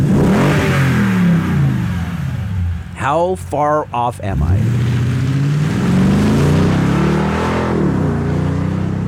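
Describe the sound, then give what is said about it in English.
A Toyota Tundra truck engine revs loudly and steadily, its deep rumble rising and falling throughout, with a man briefly speaking over it partway through. “No, it's not! Toyota Tundra!”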